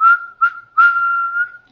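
Someone whistles a brief, cheerful phrase: two quick notes followed by a longer, sustained tone that wavers slightly before trailing off. No talking accompanies it.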